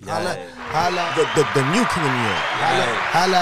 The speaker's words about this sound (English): Play the round of applause again. Give him applause. I got you. Everybody clap.